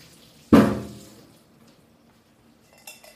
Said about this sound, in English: We do want to rinse it a little bit. So I will pour out the first infusion.